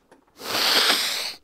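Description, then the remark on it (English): A single forceful, breathy exhale from a breathing exercise rushes out for about a second, a loud airy hiss that starts abruptly and cuts off cleanly, preceded by a faint brief intake. “Okay, well, can you show us maybe some. Some breathing exercises?”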